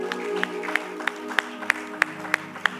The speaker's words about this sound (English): You can clap your hands.